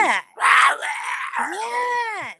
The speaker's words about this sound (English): But there's one, after the very first howl that I recorded, there's another one that follows that is more like just a crazy scream. It's like a death scream.